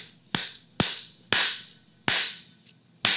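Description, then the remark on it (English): Five sharp, irregularly spaced hits ring out, each leaving a bright, hissy room-noise echo that fades slowly before the next one. No one speaks. “I'm actually hearing a ring because I'm really, really, really listening for it.”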